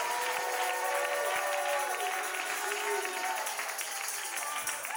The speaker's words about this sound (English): I know your taxes are high too, but you're clapping your hands. You're running the aisles. You're stomping the devil.